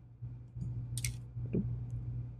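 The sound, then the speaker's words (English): A plastic toy part snaps into place in a robot toy's shoulder with a couple of short clicks and some handling rustle, over a low steady hum with no talking. “Clicking in. It clicks?”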